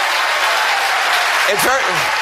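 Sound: standing ovation applause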